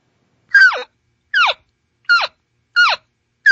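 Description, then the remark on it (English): A voice imitates a separated or lost calf's chirp call: five short, high chirps that each slide sharply downward in pitch, repeated at a steady, fairly quick pace with brief silences between and no talking. “It's just, you know, because calves do more of a chirp than a mew.”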